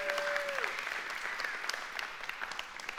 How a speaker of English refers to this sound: If you believe that today, give the Lord a hand clap.